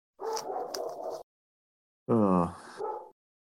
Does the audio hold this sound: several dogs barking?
yes